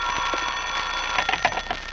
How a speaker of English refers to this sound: The telephone sounded like it was ringing miles away.